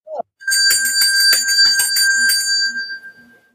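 A bright bell rings, struck rapidly several times so its shimmering metallic tones blur together, digitally enhanced with an electronic, processed sheen, then fade away. No voices are heard.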